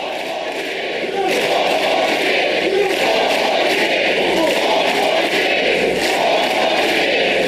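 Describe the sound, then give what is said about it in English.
A large crowd chants "four more years" in unison while protesters chant "ceasefire now", loud and steady, with a repeating rhythmic pulse; the chant swells after the first second and keeps going without a break. “So the protesters are saying ceasefire now, and the crowd saying 4 more years.”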